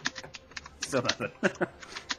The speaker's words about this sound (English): So now we can hear her. I see. She's a very aggressive keyboard. Clickety-clack.